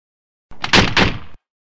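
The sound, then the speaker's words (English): A button is pressed to open garage doors: a brief, loud rattling rush of mechanical noise lasting under a second, then an abrupt cut into silence. No voices. “The keys were in the ignition, and I hit the button to open the garage doors.”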